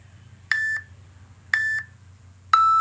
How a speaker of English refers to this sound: Here we go, number one. You hear the beeps? I do hear the beeps.